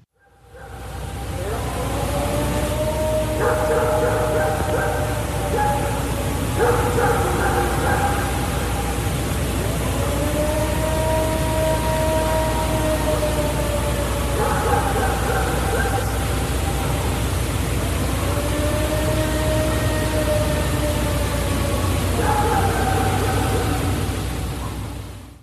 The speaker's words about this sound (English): When I first heard that, I thought it sounded like a Sasquatch mimicking a siren, like some sort of alarm. Yeah. A tornado call actually makes a lot more sense now that you say that.